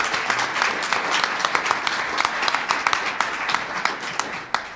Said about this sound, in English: Warm round of applause, please, for Donna Skelly.